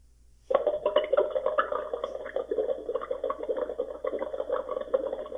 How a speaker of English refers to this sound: Now let me blow into my water. This is the Kangen water.